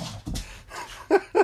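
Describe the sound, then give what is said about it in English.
An excited dog pants breathily, then lets out two quick, high-pitched yips or whines in rapid succession near the end. “The dog is very excited.”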